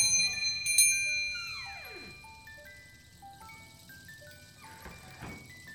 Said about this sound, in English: Charles pushed against the door and felt a little thrill as a bell went ting-a-ling.